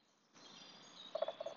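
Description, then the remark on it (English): A woodpecker gives a quick series of short, hollow calling notes in two brief bursts over a steady outdoor hiss with no talking. “I'm closing it out with the woodpecker.”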